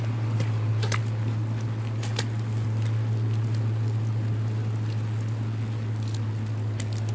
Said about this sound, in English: He's trying to rev up his car because he's cold and get that heat going.